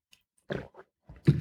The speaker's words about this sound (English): And excuse me there, I'll take a sip of tea here, but I will talk about more at the end. Darjeeling black tea.